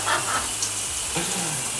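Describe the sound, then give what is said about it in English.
Steady hiss of shower water spraying continuously while a person washes their hair, a dense rushing noise with faint low thumps underneath and no voices. “Okay, but seriously, I'm in the shower right now. I was washing my hair.”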